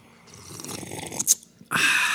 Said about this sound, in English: You know what that was? That was a refreshing sip of Dunkin' Donuts coffee. It's delicious.